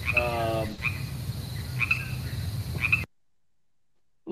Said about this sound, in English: I honestly didn't know there were crickets in Miami.